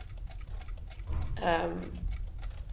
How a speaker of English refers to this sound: Should we just remove these clocks again? Because I'm afraid the listener will get insane from having this much ticking inside their ears.